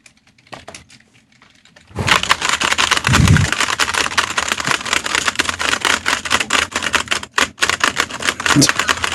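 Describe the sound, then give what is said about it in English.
Rapid, dense clatter of typewriter keys starts after a brief quiet moment and continues steadily and loudly, with a few short pauses and a soft low thump near the start. “It's a fast typing.”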